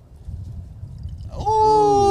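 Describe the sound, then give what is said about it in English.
Tequila pours from a bottle into a glass, loud, with a bright ringing tone that rises in pitch as the glass fills, following a stretch of low background rumble. “When you hear the wolf pack out here, you know that bottle sound real nice and delicious”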